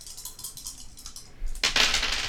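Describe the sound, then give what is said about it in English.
A handful of dice, two green and a purple, rattle and clatter, a run of light clicks and taps giving way to a louder, denser burst of tumbling near the end as they scatter and settle. “So I'm gonna roll two green and a purple.”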